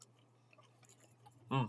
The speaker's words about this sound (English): I like the little crunches you get in it, because it's very airy. All these cheese are airy. That's a great way to describe it. Very airy. It almost chews like gum, but it disintegrates.